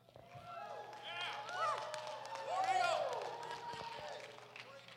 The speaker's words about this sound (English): But if you see a hashtag that fits you, I want you to make some noise. I want you to cheer and say, yes, yes, yes, that's me.